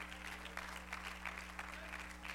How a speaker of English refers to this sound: Before You're seated, let's clap our hands one more time to our God. Thank You, Jesus.